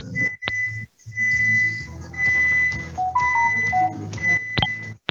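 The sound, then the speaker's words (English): A microwave convection oven sounds its done alert after convection baking cookies at 350 degrees: sustained high electronic beeps with a few shorter stepped tones, over a low appliance hum, fairly loud, with no talking. “And not only do I get the beep and the Amazon Echo tells me, but I also get a notification on my phone.”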